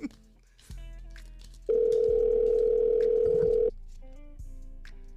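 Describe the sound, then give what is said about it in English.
A phone call to a local Walmart store rings out unanswered: one loud, steady electronic ringback tone lasting about two seconds, with faint background murmur and low hum before and after. “They never answer their phone.”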